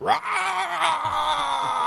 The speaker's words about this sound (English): Just keep yelling.